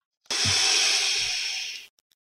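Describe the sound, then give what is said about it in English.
A single long, steady hissing exhale from a vape, used in place of banging a gavel. It is airy and bright and lasts about a second and a half before cutting off, with a couple of soft low bumps underneath and no talking. “I don't have a gavel to bang. I've got a vape.”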